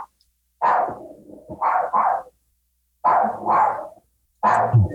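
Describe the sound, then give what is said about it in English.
A dog barks loudly, firing off short bursts of rough barks in three or four uneven clusters with brief silent pauses in between. No one speaks. “You got some dog action going there.”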